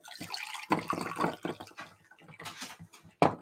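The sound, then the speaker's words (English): Very hot tea (a tisane) pours into a cup over edible glitter sprinkles in a few splashy bursts, with a bright trickling and splashing texture, moderately loud, with no voices. “So when I pour it over it, it's gonna kind of give it that magical look to it.”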